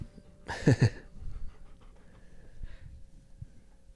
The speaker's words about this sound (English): My big old golden doodle, you're breathing right into the mic, aren't you?